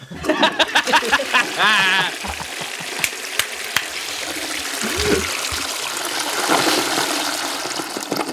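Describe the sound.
A toilet flush: a loud rush of swirling, gurgling water that keeps roaring for several seconds. It follows a brief burst of voice-like sound at the start.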